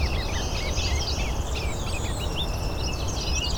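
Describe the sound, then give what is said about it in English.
A ruby-crowned kinglet sings in a steady run of high, quick chirps and twittering notes over a constant low outdoor rumble with other birdsong mixed in. “There's the ruby-crowned kinglet.”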